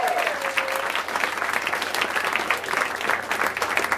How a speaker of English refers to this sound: We're going to bring up round one. Baron Vaughn, Amber Tozer, Claudia Cogan, Emily Gordon, and Moshe Kasher, ladies and gentlemen. Big round of applause.